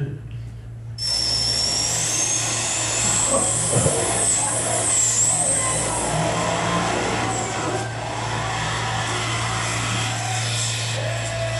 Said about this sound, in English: I don't know if you've ever been to a semi-truck race. But this will just give, since this is our launching analogy, this will give you a feel for the kind of energy required to build momentum. This is just a clip of a semi-truck race.